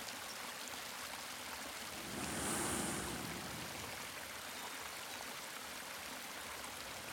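A waterfall in a sunlit hidden alcove pours steadily, a continuous rushing hiss of falling water that swells briefly louder partway through before settling back to an even roar. No voices are heard.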